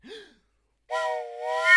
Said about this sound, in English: Blow your fucking whistle.